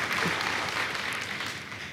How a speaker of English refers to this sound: Oh, I'm going to clap louder than anybody else because I'm even more excited.